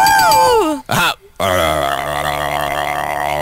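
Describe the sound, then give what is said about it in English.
A voice imitates a didgeridoo, the native instrument of Australia: a falling vocal glide and a short grunt-like burst, then a steady, loud, low buzzing drone with wavering, wah-like overtones that holds for about two seconds. “That happens to be the sound of the didgeridoo, which is the native instrument of Australia.”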